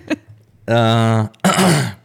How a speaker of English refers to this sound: So stop clearing your throat.